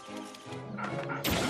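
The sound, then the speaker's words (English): A robot dog gives a few short, buzzy barks in quick succession, fairly loud, ending in a sudden bright clattering burst. “That robot dog's so cool.”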